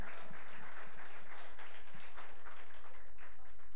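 A crowd applauds steadily for guest speaker Bill Richardson, director of Light of the World Prayer Center on Smith Road, many hands clapping together in a dense, continuous patter that holds at an even, moderate level throughout, with no one speaking over it.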